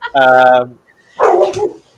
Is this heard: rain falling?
no